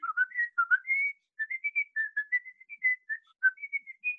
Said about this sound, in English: Oh, I just whistled.